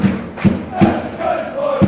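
Football fans in a stadium cheer and chant loudly, urging their team on to try and get a late winner: a dense roar of many voices punctuated by regular rhythmic accented shouts or thumps roughly every half second.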